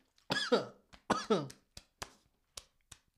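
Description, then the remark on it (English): Two harsh, rasping coughing bursts, followed by several short, weaker hacking coughs tapering off, as someone chokes after swallowing wrong. “Y'all ever like swallow, fucked up, start coughing and shit?”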